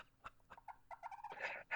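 A turkey calls in a quick series of short, clucking yelps, fairly loud, building into a harsher, more intense burst near the end.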